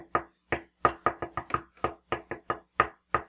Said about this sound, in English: What the heck is that coming from? Latch. The latch. What's it doing? There's like a knocking. Hello? It sounds just like that.